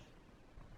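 A single quick, sharp sneeze bursts out near the end, following a stretch of faint, quiet room tone.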